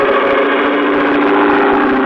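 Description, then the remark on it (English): A loud, steady engine roar with a strong droning hum and a harmonic whine, holding constant throughout with no voices: an airboat's powerful motor with an airplane-type propeller at the back, taking off over the shallow water of a bayou. “At the back was a powerful motor with a propeller of the airplane type.”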